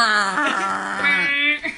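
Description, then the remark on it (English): A person's voice imitates a foghorn alarm, producing a loud, sustained droning tone that wavers in pitch for about two seconds, with a slightly whiny, dog-like quality. “If an alarm went off, and like a loud alarm that was like... like something equally as annoying, or like the foghorn.”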